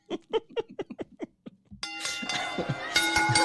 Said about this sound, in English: Keep ringing bell.